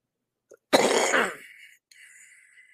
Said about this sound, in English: Wow, that was a cough, folks. Sorry about that. The cough obviously is still there.